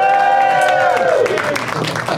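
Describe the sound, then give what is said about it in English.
A loud burst of crowd cheering and whooping cut into the show Doug Loves Movies, with many overlapping voices and shouts, sustained throughout with a few rising yells. “We're going to cut in another crowd doing that and then cut back to me going, back once again at Flappers in Burbank!”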